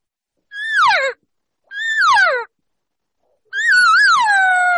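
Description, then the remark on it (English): Three loud imitated cow calls: two short, falling mews, then a longer one that wavers before dropping off at the end, with brief silences between them and no talking. The caller changes the tone and cadence to mimic a cow inviting a bull to come her way. “If I'm asking the bull to come over to me as I move up, I am now going to change my tones, my tone or the cadence of the call, what a cow will do when she's inviting or asking the bull to come her way. And so she will change it like this.”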